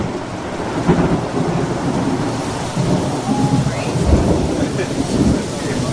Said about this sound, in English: Listen to that, man. It was nasty rain. It was scary.